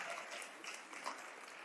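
A crowd claps together in a steady, dense patter of many hands, fairly soft and continuous without clear individual beats, with no voices heard over it.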